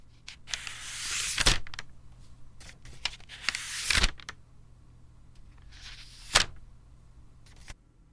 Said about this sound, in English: If you read a lot, it's turning the pages in a book. Yeah, nice and easy.